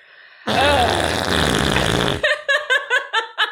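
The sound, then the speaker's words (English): A voice loudly imitates a long, ripping fart with a rough, buzzing raspberry sound lasting nearly two seconds, followed right away by a burst of rhythmic, pulsing laughter. “Because it makes me just like the only thing that I think of when I watch it is I just hear a giant fart rip in my head.”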